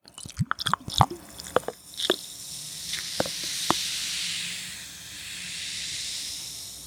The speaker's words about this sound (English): So invert the bottle, and then you can twist it open. Then we take our glass of ice with the fancy cube, and then we pour it.